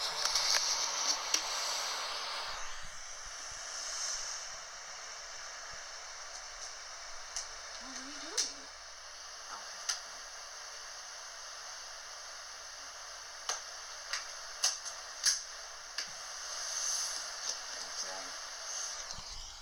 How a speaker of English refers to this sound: Yeah, it sounds like... Like, I'm trying to figure out what the clicking noises are. It sounds like someone is, like, trying to open a briefcase. You know what I mean? Like, the click, click, click, click, click.